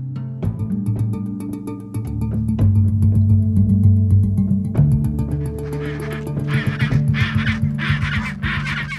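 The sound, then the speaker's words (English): A dense chorus of honking, braying calls from a crowded penguin colony in Antarctica, many overlapping and continuous, loud, all calling at once with no talking. “Over the decades that you've been coming here counting all these birds, do you have any sense of a cumulative number, how many penguins you've actually counted?”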